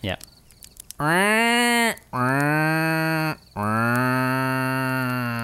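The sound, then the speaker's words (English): A person outdoors in nature imitates a crow call with three long, drawn-out voiced cries, loud, each rising then holding steady, coming out more like a low bleat or moo than a sharp caw. “Have you ever heard my crow impersonation?”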